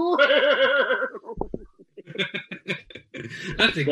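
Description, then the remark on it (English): A person gives a loud, quavering imitation of a goat's bleat for about a second, its pitch wobbling rapidly, followed by a burst of excited talking and laughter. “That's a goat.”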